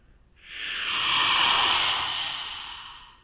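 A single rushing, hissing whoosh of wind that swells in over half a second, holds steady, then slowly fades, breathy and airy like a voice imitating a gust, with no talking.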